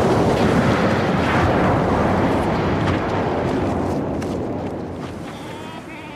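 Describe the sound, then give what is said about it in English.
An avalanche: a heavy, continuous rumble with a dense low roar and hissing debris noise stays loud for several seconds, then slowly eases off toward the end. No voices are heard. “It's an avalanche, neither more nor less.”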